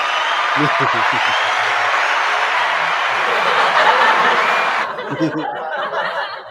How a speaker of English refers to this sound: Where did you get that fucking applause button